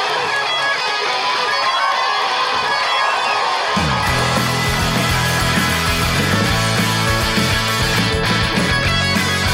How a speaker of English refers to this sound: Thanks for that amazing round of applause, Vancouver.